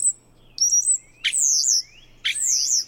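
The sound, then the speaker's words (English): European starling calls: a few high, sliding whistles and buzzy sweeping notes repeated in quick bursts, fairly loud over a faint low hum, with no talking. “European starlings are a common sight in suburban yards, waddling methodically through the grass to dig for grubs and other tasty bits.”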